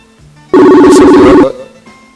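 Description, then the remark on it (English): A loud electronic ringtone of an incoming call on a phone chimes for about a second, a bright, steady melodic tone with strong harmonics, then cuts off abruptly, leaving quiet background hum. “I think he's calling me. Let's see. Why is it not... It's showing up on my phone, but it's not showing up here on the computer.”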